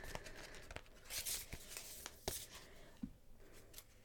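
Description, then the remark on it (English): A deck of Work Your Light Oracle cards being shuffled, with soft papery rustling broken by sharp flicks and slaps at uneven intervals, fairly quiet and with no one talking. “I'm just going to give the cards a bit of a shuffle.”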